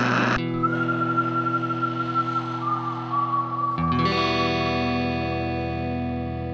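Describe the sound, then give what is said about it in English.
Steady radio static with a hissing, buzzy hum and a thin wavering whistle gliding across it as a radio is being tuned, then a brief click and a shift into denser, tonal crackling noise that continues without speech. “Okay, for now, let's see if we can get the radio tuned properly, eh? It's already working.”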